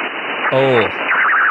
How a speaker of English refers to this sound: but I'm getting this really, really weird crackling sound in my head.